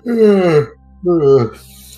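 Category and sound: human body sound, yawning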